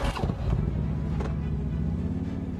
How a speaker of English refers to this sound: Now he starts the ad off getting out of his truck, and he ends the ad getting on his Harley and driving away.